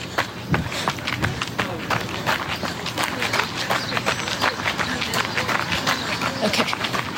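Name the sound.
running footsteps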